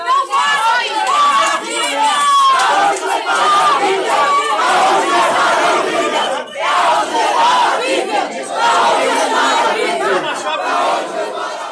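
A dense crowd of protesters shouts and yells continuously as police begin pepper spraying them, many voices overlapping in loud, agitated cries with no pauses, a chaotic wall of raised voices throughout.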